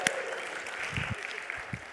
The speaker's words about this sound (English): I thought people would cheer. All the husbands and wives, come on, let's cheer together. All right, thank you, Lord. Come on.